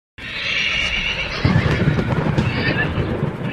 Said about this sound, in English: Horses on a helicopter. Did you hear that?